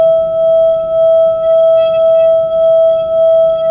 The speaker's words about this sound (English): Okay, so like I said, it comes with a stick. You're supposed to run the stick around the rim of the bowl to make this sound.